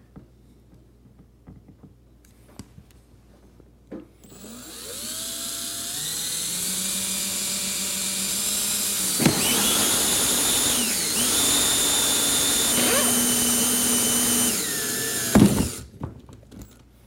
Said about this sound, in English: to make a pencil outline, so when we go to drill this, we put it back in this exact location.